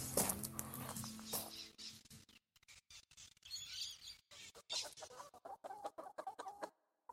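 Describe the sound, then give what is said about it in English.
Several layer chickens cluck and squawk in an integrated poultry run on a farm during a drought, a busy overlapping chatter with short bursts and brief pauses, plus faint rustling and scratching around them. “This area here is the integrated poultry run, and this services the chickens, the layer chickens, the layer Khaki Campbell ducks and the breeding Khaki Campbell ducks.”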